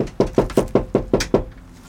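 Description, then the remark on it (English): Seven firm, evenly spaced knocks on a front door in Pinpoint in quick succession, fairly loud, then a brief quiet pause. No one speaks. “Some folks didn't answer their doors, but a few did speak with me in their front yards.”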